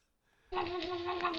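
After a brief hush, a dog lets out a loud, nasal, duck-like quacking noise that holds steady for about a second, with no talking.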